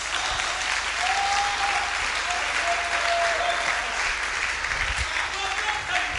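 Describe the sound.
A church audience claps steadily for several seconds, giving the Lord a mighty clap, a loud, dense wash of many hands with faint voices and a few whoops rising above the applause.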